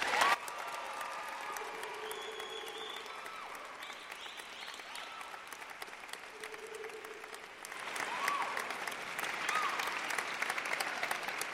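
An audience applauds to welcome a second speaker, in a sustained, dense wash of clapping that runs the full length, swelling louder near the end, with faint whoops and cheers mixed in.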